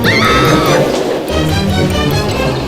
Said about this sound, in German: Da hörte er einen Schrei.